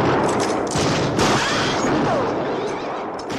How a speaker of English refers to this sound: But it does not lose its effect. Especially because as soon as the gunfire starts, it's loud.